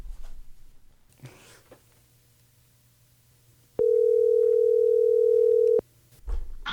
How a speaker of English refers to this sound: What are we waiting for? Let's call him. Okay, let's dial.